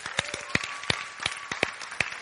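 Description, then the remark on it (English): A church group claps for the church's deacons in a steady, moderately loud burst of applause, with sharp individual hand claps standing out over a continuous patter of many hands. “Come on, let's give them a clap.”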